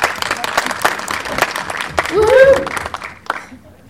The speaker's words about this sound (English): B. You are correct. Big round of applause.